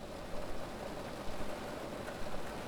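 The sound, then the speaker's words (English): Steady rain falling, a soft continuous hiss with faint patter throughout, fairly quiet and even, with no voices. “I did not cause the rain.”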